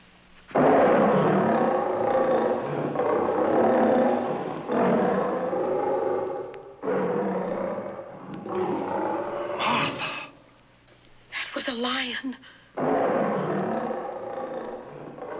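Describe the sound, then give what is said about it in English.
Several long, loud, rumbling roars of lions loose from a circus train follow one another with short pauses between, broken midway by a brief higher, wavering animal call. “Great Scott, that was the circus train, and the lions are loose.”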